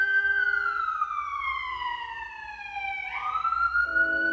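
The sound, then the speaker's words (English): An emergency vehicle siren wails loudly in a long falling sweep, then swings back upward, its pitch sliding as it passes by over a low rumble of traffic. “The beauty of the siren is he's watching himself recover into a beautiful sympathetic ease.”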